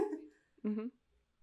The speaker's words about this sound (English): And, like, I think I just burped into the mic. I love that. It's a little treat.